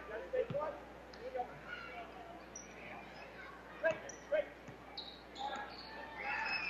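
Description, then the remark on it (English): A basketball is dribbled during a game on a hard gym floor a few times at an uneven pace, the ball handler under no defensive pressure, mixed with sneaker squeaks, indoor echo and faint voices in the background. “So on the bounce, not facing any pressure now.”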